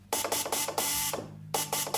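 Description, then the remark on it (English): A homemade spark transmitter built with a Ford ignition coil and a condenser of photograph plates and tin foil rasps out Morse code for the letter V, used for test purposes: three short buzzing crackles and one long one, then the pattern starts again. The tone is harsh, bright and loud, with no voices. “This is what radio sounded like when Mills first started, the dots and dashes of Morse code. That's the letter V, which you use for test purposes.”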